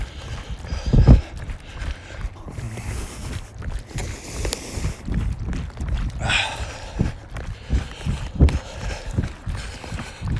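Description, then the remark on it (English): A water bottle carried in a runner's hand bounces and sloshes in a steady, repeated rhythm with running footsteps during a run, a series of dull thuds and clacks over a continuous background rumble, with no talking. “Hear that water bottle bouncing.”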